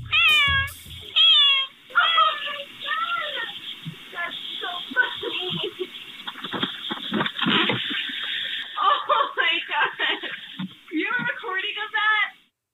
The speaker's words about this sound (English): Here's the 8-year-old cat, Lily, activating the doorbell, meowing